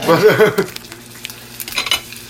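Butter sizzles and crackles in a hot frying pan as more butter is added, a steady hiss broken by small sharp pops, with a brief wavering tone and a clink of utensils near the start.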